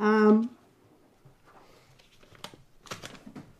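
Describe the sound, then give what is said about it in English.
A brief voiced sound opens, then quiet scratching of a pen writing a name on paper in short irregular strokes, growing a bit busier toward the end. “So do you want me to take a piece of paper for you so you can write it down?”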